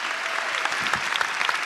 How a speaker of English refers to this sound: Would you please welcome him with a round of applause as he comes?